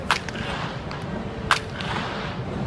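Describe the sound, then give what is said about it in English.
Sharp, bright cracks of a baseball bat striking a ball, one at the start and another about halfway through, over a steady murmur of crowd noise. “The crack of a hitter's bat.”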